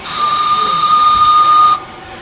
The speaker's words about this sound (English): I'm presuming it has a whistle. Can we maybe have a wee blast of it?